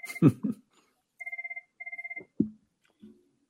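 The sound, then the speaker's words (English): A telephone rings in two short, warbling bursts of electronic trill, bracketed by a few soft thumps and handling noises, with no one speaking. “Phone. We can cut it out.”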